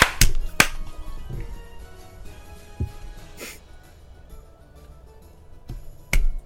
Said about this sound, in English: New clap test. Do we need a clap? Yeah. Clap number two. Do we all clap? Mm-hmm. Right. 1, 2.